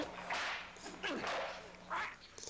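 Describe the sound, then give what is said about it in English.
Three sharp, loud slaps land on a man at uneven intervals, each a crisp smack with a brief ringing tail, with no voices. “Slap the Irish guy again, to be sure.”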